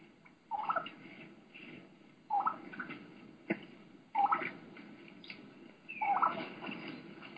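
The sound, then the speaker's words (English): A young wild turkey hen gives a key-key run into yelps: four short bursts of high, whistled notes breaking into raspier yelps, spaced about two seconds apart, as turkeys walk right by through leaves, over a steady rustling background. “Typically considered a key-key run, where they do a key-key, the young hen sounds, and then run right into a yelp.”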